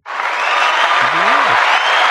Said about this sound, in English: When I say applause, they should applaud. right? Let's see. And applause. If I say, damn it, louder.